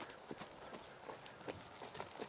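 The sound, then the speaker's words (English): Quiet, steady clip-clop of a ridden horse's hooves trotting on firm ground, a quick regular rhythm of soft thuds, with no voices. “Then you can come up to your trot a little bit.”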